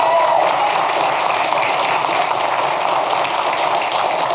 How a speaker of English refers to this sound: I want you just to stand up, turn to them, and let's give them a huge round of applause for what God is doing in this place.